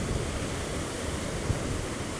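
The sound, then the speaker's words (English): Steady, broad rushing noise of ocean surf washing on a beach with a storm looming, constant and fairly loud with a slight swell in the low end, no voices. “I'm thinking of you, and here's what the beach sounds like here.”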